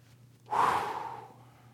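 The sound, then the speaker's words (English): A single loud, heavy breath, a sharp rushing exhale that fades over about a second, done by a voice imitating exasperated breathing over a faint low hum. “The heavy breathing.”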